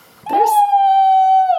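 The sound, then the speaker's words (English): A person mimics a dog with one loud howl: a breathy onset, then a steady, sustained high-pitched tone lasting over a second before cutting off. “People just turned off based on that noise that you made. Because the dogs are around, yeah.”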